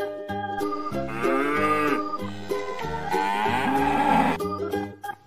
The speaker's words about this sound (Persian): درسته که شاخ داری، یه گاو مهربون باش. بازم بگو ما و ما علف برات میارم.